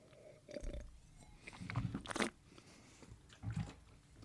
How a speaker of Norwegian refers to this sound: Beklager lydene av spytting og... Gurgling. Slafsing.